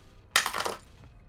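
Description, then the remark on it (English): A short, bright clatter of dice tumbling across a hard tabletop during a tabletop role-playing game damage roll, several quick rattling impacts that settle within half a second, followed by one faint final tap. “Is that you rolled a 6?”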